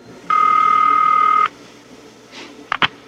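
A telephone keypad tone holds steadily for about a second, then after a short quiet gap two quick touch-tone blips follow, clear with no voices.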